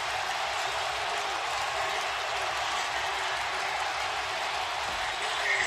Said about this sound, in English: And now they win it. Hatterberg is mobbed at home plate. The crowd comes back to insane life.